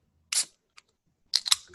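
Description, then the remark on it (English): A can of rosé wine being opened: a sharp metallic crack of the tab, a tiny tick, then a brighter burst of hissing fizz that tapers off. No one speaks. “I got my $4.99 can of wine. So here we go. Let's try to ASMR this.”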